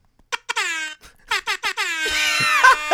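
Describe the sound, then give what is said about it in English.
A loud Jamaican air horn sound effect, played from a sound-effects app, blasts in the classic reggae pattern: several short staccato honks followed by a long sustained blare, bright and brassy, with no talking. “The Jamaican air horn will never get old.”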